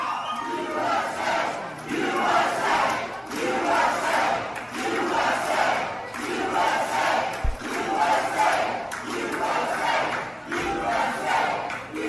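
A large crowd chants "USA" in loud, rhythmic unison as Donald Trump enters a campaign event, voices swelling in repeated waves across the whole stretch, with a couple of low thuds underneath and no single speaker standing out.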